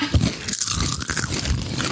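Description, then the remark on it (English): Loud, crackly crunching of potato chips being chewed, a dense run of sharp, irregular crunches lasting the whole two seconds with no talking. “Crunchy. These chips low key taste good.”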